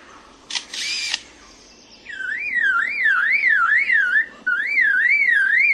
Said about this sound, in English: He also, in his attempt to outsing his rivals, incorporates other sounds that he hears in the forest. That was a camera shutter. And again. And now a camera with a motor drive.